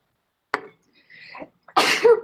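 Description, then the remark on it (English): Someone gives a short intake of breath and a voiced wind-up, then lets out one loud, explosive sneeze that sprays noisy air across the whole range. “Pardon. Bless you.”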